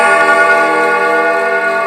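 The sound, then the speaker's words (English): A grandfather clock chimes, one loud, sustained metallic tone ringing steadily with rich, shimmering overtones for the whole moment, with no voices over it. “Man, I hate grandfather clocks. They're so creepy.”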